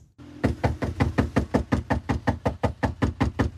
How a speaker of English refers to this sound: Now, put yourself in this guy's shoes. How would you like to have cops bang on your door and tell you this?